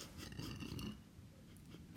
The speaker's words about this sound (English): … just snicker laughed so long she burped.